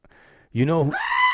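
A goat lets out a single loud, wavering bleat, rising and quavering for about a second after a brief faint sound.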